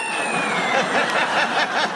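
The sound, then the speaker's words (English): Steady crackling static hiss from a novelty sound-effect gadget meant to imitate static in a car, continuous and fairly loud for about two seconds, with a faint high whine running through it and no voices. “This is for static in your car.”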